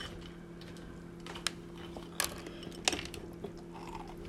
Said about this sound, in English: I don't want crunchy cereal. It's too loud in my head. Loud in head.